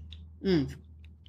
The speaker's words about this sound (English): Sip of my beverage.